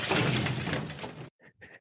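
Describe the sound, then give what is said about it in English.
A window smashes as a chair is thrown through it from outside, one loud burst of shattering glass that roars for over a second, then stops dead, followed by two short, fainter tinkles of falling shards. “As the doctor is going through the various cuts and dissections that have happened, the window shatters.”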